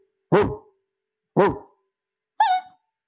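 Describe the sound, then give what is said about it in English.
Three sharp barks from a heavy dog at a forest campsite at night ring out about a second apart, loud, the last one higher and more yelping than the first two, with silence between them. “JP bolts upright to the sound of his dogs barking.”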